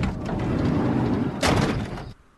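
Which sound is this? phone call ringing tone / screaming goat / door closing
door closing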